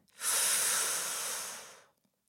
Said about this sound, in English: I tried to regulate my breathing. Deep breath.